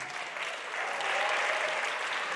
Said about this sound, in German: Und natürlich einen großen Applaus an unseren Bingo-Veteranen Herrn.